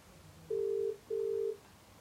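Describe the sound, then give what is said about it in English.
A phone's outgoing ringing tone sounds once as someone calls a person to tell him to come in: a steady double burst of two short, clear tones in quick succession, followed by quiet. It comes through moderately loud over a faint background hum, with no talking. “I'm calling and telling him to come in.”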